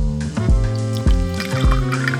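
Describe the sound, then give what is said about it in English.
Bourbon glugs from a bottle into a glass, fairly loud, with a steady gurgle broken by rhythmic glug pulses about every half second. No voices. “Around the world, one pour at a time.”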